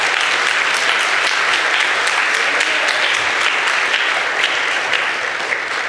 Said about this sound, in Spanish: Si lo quiere, dale un aplauso fuerte, Señor.